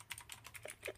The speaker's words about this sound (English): I hear the keyboard clicking, so we know what that means.